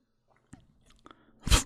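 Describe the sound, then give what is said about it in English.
A sip of Breck lager beer: a couple of soft mouth clicks, then one short, wet slurp near the end, with no talking. “as I Vanna White this Breck lager for you here and take a little sip”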